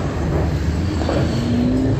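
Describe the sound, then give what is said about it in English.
Steady, dense rumble of congested road traffic in Baltimore with cars moving by; toward the end one engine's tone climbs as it accelerates. No one speaks. “Oh, that traffic.”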